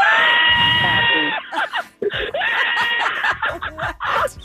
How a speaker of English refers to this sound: Was that him or her laughing and screaming? The banshee? I think that was him.